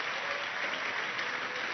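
A church audience claps steadily for a couple of seconds to welcome a pastor, a dense, even wash of many hands with no voices standing out above it.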